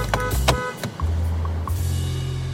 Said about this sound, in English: They like staged this whole scene where he's out there honking his horn and can't get in the gate.